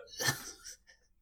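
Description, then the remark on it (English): A single sharp, breathy hiccup bursts out, trailing into a soft exhale and a faint second catch of breath. No talking. “Oh, I got the bad hiccups.”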